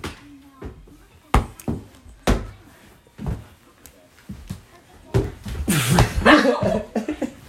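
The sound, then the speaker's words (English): A single loud sneeze bursts out near the end, preceded by a few sharp knocks and thumps, with faint voices murmuring in the background. “Bless you.”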